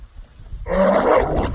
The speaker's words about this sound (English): And he's swimming through them, and it looks like he swallows one, and it gets stuck in his throat. So this is the sound. This sounds like a TIE fighter.